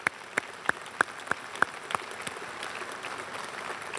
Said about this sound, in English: And can we just applaud those who stand faithfully?